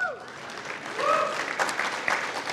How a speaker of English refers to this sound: My dad's here. Happy Father's Day, Dad. That's when our campus busts into applause for you.